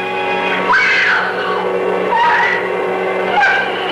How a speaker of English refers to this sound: Terrorizing those who dare to love with the maddening, jealous shriek